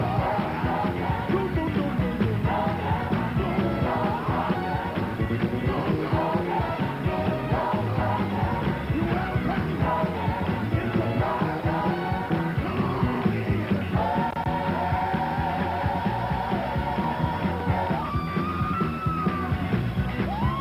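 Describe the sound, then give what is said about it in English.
A crowd of voices shouting and whooping in ecstatic excitement, loud and dense throughout, with higher drawn-out cries rising over the din near the end. “Static shouts.”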